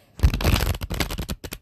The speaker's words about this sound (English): Okay, so yeah, let's just go ahead and get started. And yeah, so I'm gonna shuffle the cards.